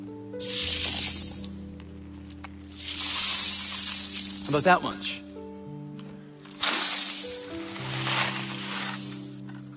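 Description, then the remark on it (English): Three long bursts of 4,000 coins pouring into a bucket, a dense, bright metallic rush that swells and fades each time, with a man speaking briefly between the pours. “This is 4,000 coins.”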